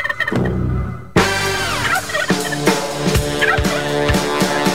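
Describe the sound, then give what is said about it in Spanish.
Turkeys gobble loudly, a dense run of rapid, warbling calls repeating over several seconds with sharp bursts in a steady rhythm and no one talking. “Bueno, entre pavos y pavitos, así nos encontramos”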